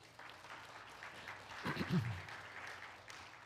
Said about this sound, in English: So for now, how about a hand clap for yourself?